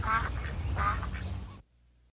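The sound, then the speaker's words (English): A duck quacks loudly, two or three raspy, nasal quacks in quick succession over a low rumble, then the sound cuts off abruptly into near silence, in a commercial for Aflac insurance. “The fact that we were going to send this duck out into the world telling people who were unaware of not only Aflac the company, but what it was, what the kind of insurance that it was, which was supplemental insurance”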